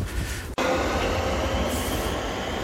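A train rumbles past a railway train shelter, a loud, steady roar of wheels and rail noise filling the whole stretch, with a brief cut near the start and no voices.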